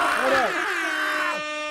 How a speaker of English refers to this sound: Oh, my God. More air horns. Hold up.